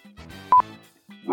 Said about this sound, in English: You might hear Bryce's dog Zap in the background. That is Zap. He's vocal today.